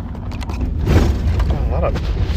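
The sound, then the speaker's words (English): A car rumbles heavily over railroad tracks, with deep low thumps and jolts rising out of a steady road roar, fairly loud throughout. “A lot of bumps. A lot of railroad tracks over here. Very, very bumpy.”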